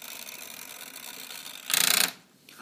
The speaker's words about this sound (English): And what about this right here? What is that? Is it a clock? Yeah. Look, it's a timer so you know how long to cook for.